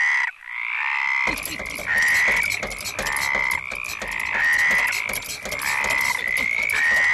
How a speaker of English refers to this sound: Now, what if a frog or two, they were having an orgy on a squeaky bed? It would sound like this.